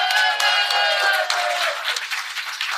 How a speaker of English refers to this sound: Clap for Steven. Yeah, we love Steven.